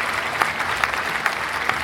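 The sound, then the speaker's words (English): A round of applause for the picture book The Noise in the Woods, a steady dense patter of many hands clapping at an even level, with a few sharper claps standing out at regular intervals. No one speaks. “That rating also earns The Noise in the Woods a round of applause.”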